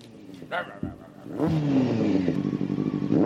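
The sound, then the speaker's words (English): A voice imitates a motorcycle engine revving, a buzzing, rising vroom that starts with short bursts and swells into a loud, sustained rev. “Got a motorcycle? Sure do.”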